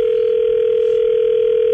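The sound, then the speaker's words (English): A steady, unbroken telephone dial tone at the start of a Prospector prank call on radio station Rock 107 hums at a constant mid pitch for almost two seconds, then cuts off abruptly. No voices are heard. “It's another Prospector prank call on Rock 107.”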